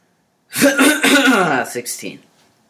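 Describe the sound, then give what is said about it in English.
A fairly loud bout of coughing and throat clearing, a rough voiced rasp followed by a couple of short, sharp bursts before it trails off into quiet. “I'm sorry, I didn't hear the chapter. I think you were coughing a bit.”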